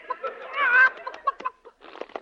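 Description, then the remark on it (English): A horse named Leghorn, which thinks it is a chicken, makes a run of chicken-like clucks and squawks, fairly loud, with a drawn-out warbling cackle early on followed by choppy, uneven clucking bursts and no talking. “Steady, Leghorn. Steady. Leghorn? That's a funny name for a horse. Yes, well, he has a mental block. He thinks he's a chicken.”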